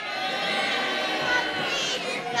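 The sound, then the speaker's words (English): An audience of adults, asked for their best animal sound, all imitate a cow's moo at once, their overlapping drawn-out voices merging into a loud, steady wash of sound with no pauses. “They all do a cow.”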